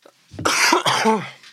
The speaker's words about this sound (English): Sorry about the coughing then. I just suddenly got a dry throat. It was like, oh, no, here it comes.